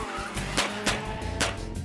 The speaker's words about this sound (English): Fast cars.